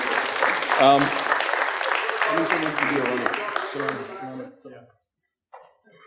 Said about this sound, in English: Give her a hand.